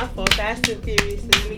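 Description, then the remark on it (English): Four sharp hand claps land at a steady, unhurried pace, with a voice sounding underneath between them; a brief, scattered bit of applause rather than a full crowd. “I think we need an applause for that.”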